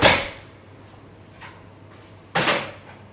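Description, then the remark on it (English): Another chair being fetched and moved because someone else has joined: a sharp scrape at the start, a lighter knock partway through, then another loud scraping shuffle, with a low hum underneath and no talking. “I'm going to have to get another chair.”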